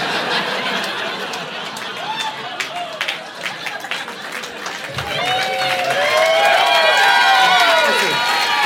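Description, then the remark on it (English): An audience at a stand-up comedy recording from Brooks Wheelan's debut album claps steadily throughout, and the applause swells about halfway, joined by rising whoops and cheering voices that grow louder toward the end. “Those are applauding a sad, sad time in my life.”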